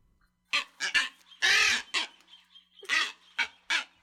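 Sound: booby seabird calls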